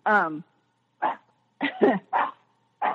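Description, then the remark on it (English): The speaker's own dog lets out a series of short, sharp barks: one drawn-out yelping bark first, then four or five quicker barks with brief pauses between them. “there goes my dog. Be quiet.”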